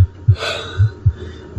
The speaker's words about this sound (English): And the first noise that comes back is first your heartbeat in your ears. Choo-choo, choo-choo. Then the breath.